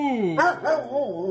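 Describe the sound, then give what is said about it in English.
A dog vocalizes in three drawn-out, pitch-sliding yowls, more howly, talking-style barks than sharp woofs, moderately loud with no other voices. “Repeat what the dog's saying.”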